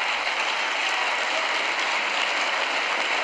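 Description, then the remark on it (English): A crowd boos a speaker loudly and steadily for a few seconds during his remarks on defaulting on the debt, a dense, continuous roar of many voices with no single speaker standing out and no break in the noise. “And he's getting booed for lying once again.”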